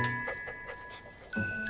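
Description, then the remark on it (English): A puppy pants in quick, soft, rhythmic breaths as it comes in to Mrs. Claus sitting before a fire, in a Mercedes-Benz holiday ad, over a steady background of sustained chiming, bell-like tones. No one speaks. “Claus, who's sitting before a nice fire, and in comes a puppy that Santa forgot to put in his Mercedes sleigh.”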